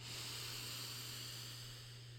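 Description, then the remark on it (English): A long, steady breath drawn in during a guided breathing exercise, breathing into the hips, soft and airy, lasting a couple of seconds with no talking, over a faint low electrical hum. “on the in-breath, I want you to breathe into your hips”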